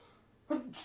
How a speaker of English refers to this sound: Bless you, sir. Excuse me, sorry.